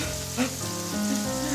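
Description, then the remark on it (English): Steady, dense hiss of a hot shower running into a bathtub, a constant rushing spray with a low droning hum underneath and no voices. “his voice lengthened and curved by his terror and the thunder of the shower.”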